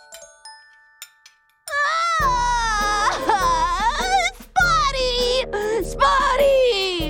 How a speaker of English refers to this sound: Out of nowhere, a cry louder than thunder came from outside the door. Oh, it was the greedy cake lover, Sweet Tooth the Giant.